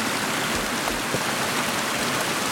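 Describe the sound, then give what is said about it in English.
Steady rain pattering on leaves and ground in woodland, heard while sheltering under the leaning beech tree beside a path, a dense, even hiss with scattered drips, continuous and fairly loud, with no voices. “And there's a little bit of shelter from the rain.”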